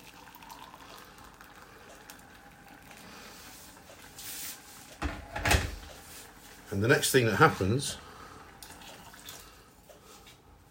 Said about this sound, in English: Now you want to be careful not to burn this, so turn it down to 3. Pour the water in. And the water must be boiling, and then it goes straight into boiling mode, right? That's what it does.